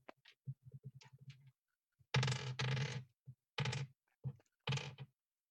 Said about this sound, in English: Oh, I keep rolling these bloody numbered dice. 1, 2, 3, 4. All right. So 4 on that, and then my unspent willpower.